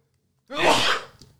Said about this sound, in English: So I liked it, but hold on. I got to sneeze again.